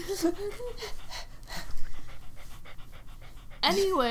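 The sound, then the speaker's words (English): A dog named Chilo pants quickly and steadily, a rapid rhythm of breathy huffs. A person's voice is briefly heard at the start and again at the end. “That's his panting.”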